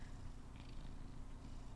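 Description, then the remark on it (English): A cat named Caster Troy purrs, a steady low rumble that pulses continuously without pause, heard on its own with no talking. “Do you guys want to hear what a cat sounds like purring”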